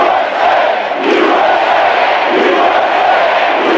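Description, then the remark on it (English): A large crowd at a Donald Trump event in an airport airplane hangar roars and chants in unison, a dense, loud wall of voices with rhythmic swells roughly every second or so, sustained throughout without pause. “Although I bet a lot of people were probably in that crowd chanting USA, USA 6 months ago.”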